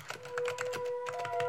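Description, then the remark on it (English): Rapid, dense keystrokes clatter on a computer keyboard as someone crouched over the computer types frantically inside a tent, a frantic stream of clicks with a faint steady electronic hum beneath. “Someone was crouched over a computer typing frantically.”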